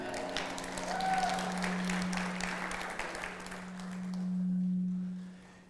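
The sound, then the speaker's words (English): Thin, scattered applause from a small group, a few seconds of uneven clapping that tapers off into quiet with a low steady hum. “Yeah, you got one hand clap there, buddy.”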